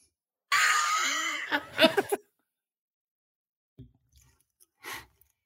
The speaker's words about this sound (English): Okay. Sorry, had to blow my nose.